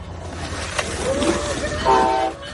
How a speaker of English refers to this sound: Oh, Jesus! Good God! I reacted as if that train had come that close to my face. If they go to a camera angle of me, you will see that I thought a train was going to hit me in the face.